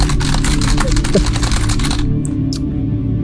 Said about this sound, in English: Hubie starts frantically typing in a keypad in front of him.